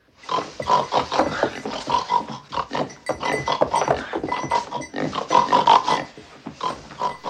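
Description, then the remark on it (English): A woman's voice imitates a pig, producing a continuous run of loud, snorting grunts and squeals for several seconds, with brief pauses between bursts. “Yeah, that's kind of scared me when she does the pig noise.”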